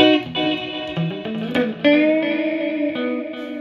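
An electric guitar plays a short melodic phrase of sustained notes through a slapback reverb setting, each note followed by a quick, tight echo that gives a doubled, bouncing quality; loud, with no talking.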